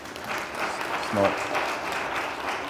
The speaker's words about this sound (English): and that also merits a round of applause.